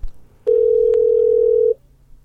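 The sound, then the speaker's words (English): A loud, steady telephone dial tone sounds alone for just over a second, one continuous unbroken hum that cuts off abruptly, with faint background rumble before and after. “So let's get her on the phone.”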